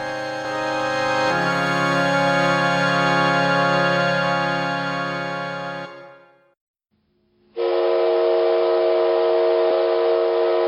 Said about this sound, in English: Deep in the wooded valleys and along the mighty rivers, a company whistle blows, rising high upon the rolling hills of western Pennsylvania. Another shift ends, Another begins at a dusty, black coal mine, clamoring steel mill, or clackety rail yard.